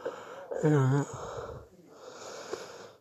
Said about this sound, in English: Excuse me, big yawn there. That's so much for not feeling too tired.